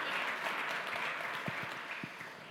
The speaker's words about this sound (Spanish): Aplauso a Cristo Jesús.